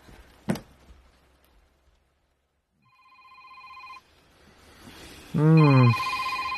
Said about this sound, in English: Your phone's ringing. Who rings anyone this early?